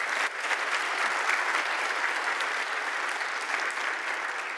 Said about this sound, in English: So all glory to God. Let us give applause to God for that.